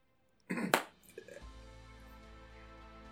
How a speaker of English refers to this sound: So he slow claps.